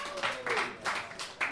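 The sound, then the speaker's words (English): An audience at a comedy roast claps to vote, in uneven, noisy bursts of applause that swell and fade several times over a second and a half, fairly soft, with a faint voice murmuring underneath. “please clap.”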